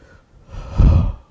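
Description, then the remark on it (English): A single heavy breath blows straight into the microphone, rising to a loud, rumbling gust of air before fading out, with no talking. “who's breathing into the microphone?”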